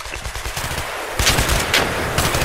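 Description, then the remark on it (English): Rapid bursts of gunfire crackle continuously, with sharper loud shots standing out around the middle and end: an automatic-weapon battle from the film Red Dawn, not paintball, raging with no voices. “Anytime you walk out this door, there's a battle going on.”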